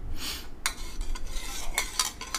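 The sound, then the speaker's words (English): Quick, brushy swishes from a broom sweeping fast, a series of bright scratchy strokes in rapid succession with no talking over them. “That's what it sounds like when I sweep. I'm a very fast sweeper.”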